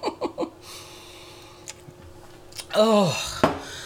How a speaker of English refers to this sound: I'm going to have a sip of Cherie. Hold on a second. I said it fancy like that.